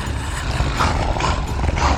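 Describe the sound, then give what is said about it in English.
Deep, rumbling growls from at least 10 giant beasts ringing a group overlap into a continuous, loud snarl coming from all sides, with rougher surges rising now and then over the low rumble and no talking. “The growling of the things increased, and now it came from all sides.”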